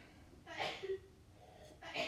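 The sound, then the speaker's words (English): Two short, breathy bursts of sneezing, roughly a second and a half apart, each a sudden hissing blast that quickly fades, with faint murmuring in between. “Bless you.”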